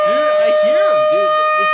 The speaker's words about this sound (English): Fucking loud in here with all these sirens.